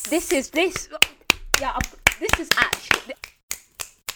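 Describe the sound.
About a dozen sharp, crisp clicks and claps celebrating Barbados removing Queen Elizabeth as head of state land in an uneven rhythm, overlapping a person talking at first and then continuing on their own in a steady, punchy series.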